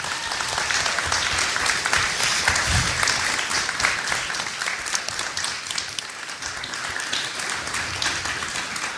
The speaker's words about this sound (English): Well, how about one last round of applause for all of the filmmakers and the talent?